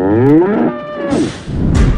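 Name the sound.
bull mooing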